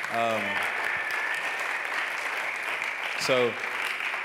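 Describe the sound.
Steady crowd applause fills the room, a dense wash of many hands clapping at once as a thank-you to the band, with a couple of brief voices calling out over it.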